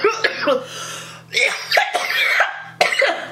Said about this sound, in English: Woo! I'm giving the fucking Chem dog cough level 7. That's like the best cough level I think I've ever given one of these strains yet.